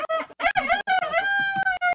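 A rooster crows loudly on a Polk County property with chickens and goats, a strained, drawn-out call that rises and then holds a long, steady note, with a few short clucks and outdoor sounds around it.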